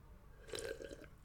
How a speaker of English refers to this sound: A little sip of water.